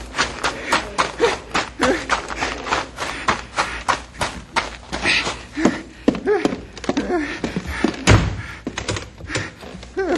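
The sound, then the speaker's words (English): A heavy bank door slams shut and is locked with a deep thud, followed by rattling clunks, amid a busy run of knocks, bumps and shuffling, with brief voices in the background. “There's the bear. Locked in the bank.”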